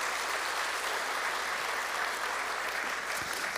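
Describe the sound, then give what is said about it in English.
Steady applause from a church audience during a morning service, a dense, even patter of many hands clapping at constant loudness throughout, with no voices standing out. “Give them a round of applause this morning if you don't mind.”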